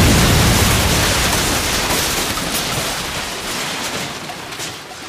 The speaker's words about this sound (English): A massive fireball explosion takes place on the car with both him and the beast on it, dealing 26 points of damage.